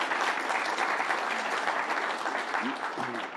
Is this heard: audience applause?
yes